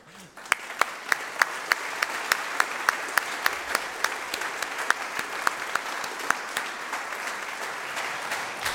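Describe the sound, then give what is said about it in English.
An audience applauds steadily for several seconds at a council meeting, honoring a departing council member, a dense wash of clapping with a few louder, sharper claps standing out in a regular beat. “I'm gonna go for another round of applause.”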